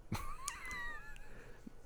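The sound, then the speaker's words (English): A voice imitates a cat hissing at someone: a sharp breathy burst, then a thin, wavering cat-like whine that fades within two seconds. Fairly quiet, with no talking. “and a cat's like hissing at him.”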